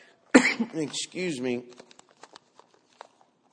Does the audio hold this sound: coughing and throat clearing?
yes